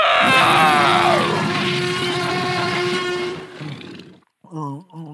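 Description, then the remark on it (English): A voice imitates a wild cat's roar: one loud, raspy, sustained growl of about three and a half seconds that fades out, followed by a short, lower, grunting vocal sound. “Like a wild kitty.”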